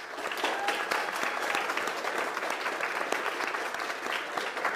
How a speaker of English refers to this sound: Can we give the choir just another round of applause, please?